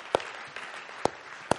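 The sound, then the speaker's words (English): Three sharp, sparse hand claps spaced unevenly over about a second and a half, a slow clap ringing out alone in a church at Easter against a faint background hum. “Slow clap in church.”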